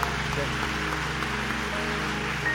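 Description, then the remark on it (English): An audience applauds a family, a dense, steady wash of many hands clapping that holds at an even loudness for a few seconds, with a faint low sustained tone underneath. “Let's give this family another big round of applause.”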